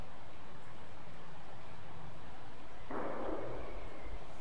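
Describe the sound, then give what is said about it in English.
A single gunshot, a muffled crack that rolls off in a short fading echo over quiet outdoor background noise. No one speaks. “That sounded like a gunshot.”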